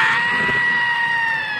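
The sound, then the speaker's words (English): A man lets out a loud, sustained high-pitched scream, held steady for over a second with no other talking. “You scream like a girl. Do it like this.”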